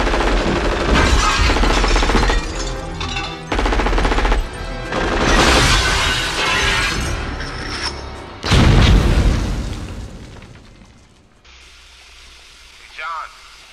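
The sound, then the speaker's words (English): Loud movie gunfire from a scene where a barefoot man is shot at by armed bad guys: dense bursts of rapid automatic shots mixed with heavy booms, pausing briefly between volleys, then a big blast before the shooting fades into a quieter tail. “He gets shot at and has to run through and over glass barefoot.”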